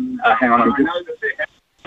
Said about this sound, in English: if you could turn the radio off in the background, we're getting feedback on that as well